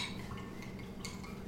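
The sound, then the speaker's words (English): A drink bought in Wisconsin being poured into glasses, a steady splashing trickle with a faint ringing tone and a light clink of glassware near the end. No one speaks. “Let me pour our glasses here.”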